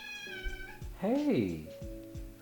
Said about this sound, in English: Hey, I still have the black cat. Hey, kitty cat. What's going on? Come here. So I have this black cat.